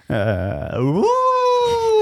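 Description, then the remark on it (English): A person imitates a wolf howl, starting with a low, wavering growl that swoops upward into a long, steady high note, loud and unaccompanied. “Give us a howl.”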